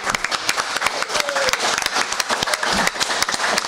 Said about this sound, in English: So we here on the panel are going to give a shout out to all of you out there in the audience. And together, let's do a little bit of an applause for the live audience.